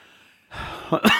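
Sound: cough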